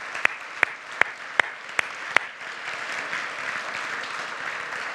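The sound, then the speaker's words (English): An audience in a church applauds steadily for the children who played and sang in a nativity, a dense wash of clapping that fills the whole stretch, with one person's loud, evenly spaced claps standing out for the first couple of seconds. “Maybe a bit of a round of applause for everyone who played and sang.”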